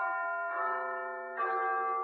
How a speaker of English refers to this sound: He lay in this state, thinking it over and over, until he heard a neighbouring church clock begin to chime.